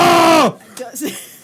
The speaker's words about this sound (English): All right. Enough screaming.